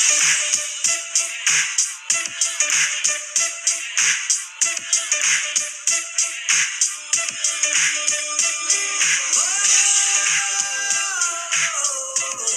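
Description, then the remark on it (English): An older-style R&B song with a hip-hop and soul feel plays through a small phone speaker, thin and tinny with a steady beat of regular percussive hits and a melodic line, fairly loud and without anyone talking over it. “So here, I'll play it on my phone and hopefully I have it turned up.”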